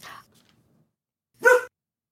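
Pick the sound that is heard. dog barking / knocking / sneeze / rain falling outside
dog barking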